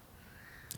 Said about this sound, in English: if you like the sounds of birds, I have so many recordings that I've done that have been just outside ambience. Is this one of your personal recordings? It is not.